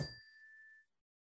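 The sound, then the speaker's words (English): A bell struck once, with a bright, clear tone that rings out and fades smoothly over nearly a second, heard alone. “I'll ring the bell once more.”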